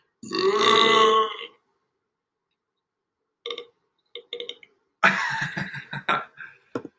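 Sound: burp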